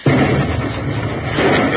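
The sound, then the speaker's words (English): A loud explosion bursts in abruptly, then rolls on as a heavy, sustained rumble with crackling debris for nearly two seconds, powerful, with no voices. “Well, I'll feel better when I hear that explosion.”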